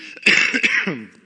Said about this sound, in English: I'm going to cough probably in a moment. I'm going to try to cover the microphone, but I'm apologizing again if it's really loud, all right? I'm going to try to hold it in.